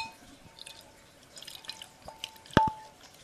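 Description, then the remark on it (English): Beer trickles faintly into a glass, with soft fizzing and a few small drips, then one sharp clink-like splash near the end. Quiet, with no voices. “Ah, you hear that going into the glass? A little. Beautiful.”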